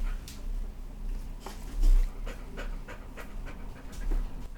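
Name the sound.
dog panting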